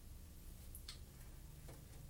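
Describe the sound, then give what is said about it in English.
Faint, sparse ticks from an alarm clock, a few soft clicks spaced under a second apart over a steady low background hum, with no one talking. “Is this your alarm clock?”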